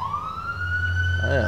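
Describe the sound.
A police siren wails in a slow rising sweep in South Central traffic, over a steady low rumble of traffic, with a brief murmur of voices near the end.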